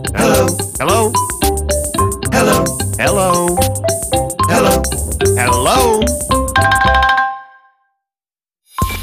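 A bright, jingly ringtone tune plays loudly with a steady beat and chiming melody, ending abruptly into silence before a brief sound at the very end.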